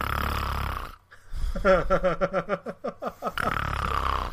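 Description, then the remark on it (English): A voice imitates loud snoring heard through the speakers and microphone while friends were playing Bloodborne: a harsh, rattling rumble, then a quick run of about nine throaty pulses, then another long rumbling snore. “who the hell is that snoring?”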